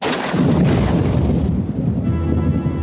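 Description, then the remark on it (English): The theme song of the 80s cartoon Count Duckula opens with a loud, continuous rumble like rolling thunder, and faint sustained musical tones begin to emerge beneath it near the end. No one speaks. “Now, what's great about this theme song is it combines what Voltron does with explaining kind of the plot of what it is.”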